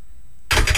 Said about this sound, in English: That's a loud door, isn't it?